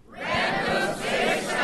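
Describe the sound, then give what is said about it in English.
A large live audience shouts together in unison on a count of three, enthusiastically, in a loud, sustained burst of voices lasting a couple of seconds, a dense, roaring wash of cheering. “We're going to get some help from the crowd, as we often do.”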